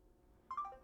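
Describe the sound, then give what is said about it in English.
A short, soft electronic phone beep signalling an incoming call, a quick pair of tones lasting about a quarter second over faint background hiss, with no talking. “Jeez, I'm getting a lot of phone calls.”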